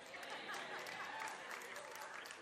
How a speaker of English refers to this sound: Thank you for those 15 claps right there.